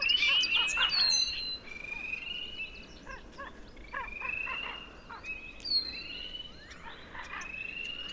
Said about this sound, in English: As my bird walk comes to a close, I return to the pond. The morning sun is heating the water and spring peepers are calling, and I can hear ravens croaking in the background.